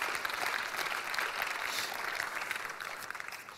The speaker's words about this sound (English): You can clap for that.